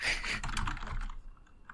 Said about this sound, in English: So there's so much typing.